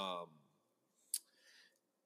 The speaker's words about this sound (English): decided to riffle shuffle these as hard as any human being has ever riffle shuffled anything that has ever been cards.